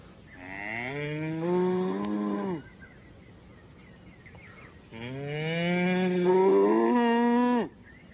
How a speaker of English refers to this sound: moo. Cow. Cow. Cow.